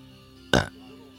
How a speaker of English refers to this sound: Mom, don't burp like that in my microphone. She's sick.